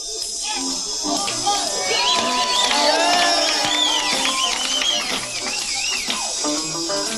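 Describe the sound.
A live concert crowd at New Morning in August 1986 erupts in a sustained roar as the performer takes the stage, with high-pitched screams and whistles rising and falling over a dense wall of cheering voices that stays loud throughout.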